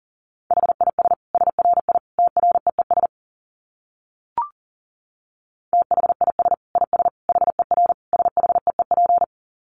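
Rapid Morse code at about 40 words per minute: a steady mid-pitched tone keyed in quick dits and dahs, two dense bursts separated by a short pause with a single click between them.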